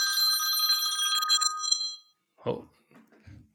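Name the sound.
phone ringing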